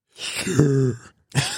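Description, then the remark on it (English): A loud gasping inhale, taken as a warm-up before trying inward talking, with a brief voiced, groaning edge in the middle, followed after a short pause by a second quick breath. “You sound like that was a normal breath after running, honestly.”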